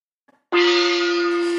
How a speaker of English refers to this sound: I've got a gong here, back here.